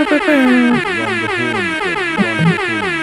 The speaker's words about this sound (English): I hope that's enough horns for you.